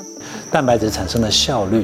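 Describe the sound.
A steady, high-pitched trill of crickets bred on a cricket farm in Mailiao Township, Yunlin County, runs unbroken through the whole moment, sitting quietly beneath a person talking in the foreground.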